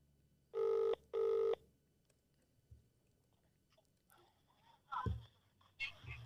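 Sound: outgoing phone call ringing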